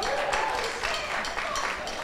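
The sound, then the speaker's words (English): A burst of crowd applause, many hands clapping in a dense, steady wash of noise that stays fairly loud and even for about two seconds. “The applause lady is over the moon.”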